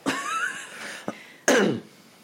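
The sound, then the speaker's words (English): A loud bout of coughing: a raspy opening cough, a short sharp one, then a harsher burst trailing off, with a throat-clearing quality and no speech. “Stop coughing so much.”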